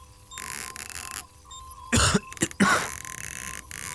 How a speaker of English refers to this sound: Is that cough persistent? No.